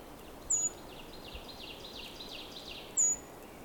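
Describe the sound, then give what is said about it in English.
A bird about 5 feet away calls with two sharp, high, downward-sliding chirps a couple of seconds apart, with faint twittering in between over a steady outdoor hiss. No one speaks. “This one's being very friendly, considering it is only 5 feet away right now.”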